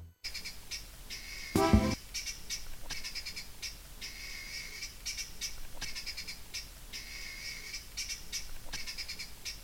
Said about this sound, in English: Birds at my beck and call. I have a switch in front of me now. A button that summons birds. Here they come. Come unto me, birds. Rest easily on your branches. Sing to the heavens.